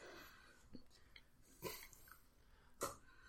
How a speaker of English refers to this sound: You ready? You good? I'll be chewing this for about 40 seconds, but yeah.